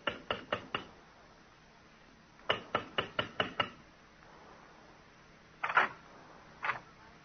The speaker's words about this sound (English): Walk down the carpeted corridor. The sprig of Christmas holly above the brass door knocker. This time we'll knock,